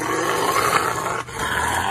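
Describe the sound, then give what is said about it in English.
A Rottweiler being given a bath by a man growls loudly in a deep, continuous rumble, breaking off for a brief moment before the low growl resumes. No one speaks. “Next one's a guy giving his Rottweiler a bath.”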